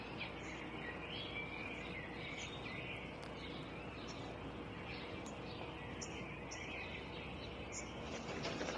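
Faint, scattered twittering chirps from a swallow in a backyard come through a dense, steady wash of outdoor noise, repeating irregularly across the whole stretch.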